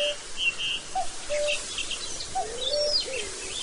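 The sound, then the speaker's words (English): A black-billed cuckoo gives soft, low cooing notes in short groups of three, while other birds chirp and twitter in the background of an open outdoor setting. “An elusive, wandering, black-billed cuckoo calls in soft triplicate.”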